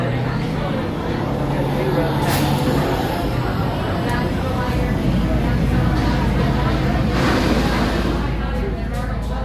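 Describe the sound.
A ride car rumbles steadily and loudly throughout, a continuous low roar with clattering texture, while indistinct voices murmur underneath.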